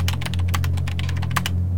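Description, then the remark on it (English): Rapid, irregular clicks of typing on a computer keyboard, a quick burst of light keystrokes over a steady low electrical hum, with no voices. “Type in a plus instead of a minus here.”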